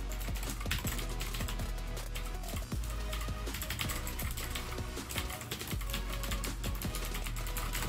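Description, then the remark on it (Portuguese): Steady, rapid typing on a steeply inclined mechanical computer keyboard without a numeric keypad, a dense run of crisp clacking keystrokes with no one speaking. “Um teclado bem inclinado.”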